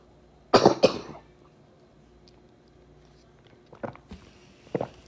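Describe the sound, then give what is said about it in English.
A loud burst of coughing, followed after a pause by two quieter, shorter coughs, with no talking. “First off, excuse the coughing.”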